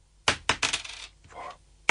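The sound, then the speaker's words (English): Five coins are dropped one after another onto a hard surface, each landing with a bright metallic clink and brief ringing jangle, fairly loud, with short gaps between them. “There's 5 coins. Here they are again. Very quickly. Coin number 1. That's 2. 3.”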